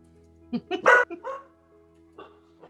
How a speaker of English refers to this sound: He's barking in pain. You actually do hear hellhounds. He's like, I'm not joking. There are hellhounds coming.